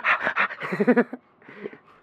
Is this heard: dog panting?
yes